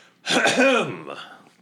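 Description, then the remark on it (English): A single loud, voiced throat clearing, a rough, drawn-out "ahem" with a rising then falling pitch that lasts under a second before trailing off into quieter breathy rasp, made in the middle of an open area. “And then I'll stride confidently into the middle of the open area and loudly clear my throat.”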